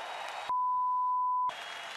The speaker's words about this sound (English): So please give him a round of applause as our heavyweight champion of the world. Woo!